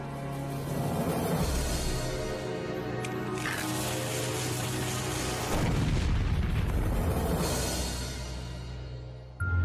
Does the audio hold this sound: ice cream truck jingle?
no